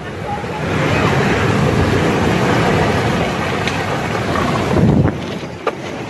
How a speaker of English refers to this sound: captures the terrifying moments a flash flood crashes into his neighborhood.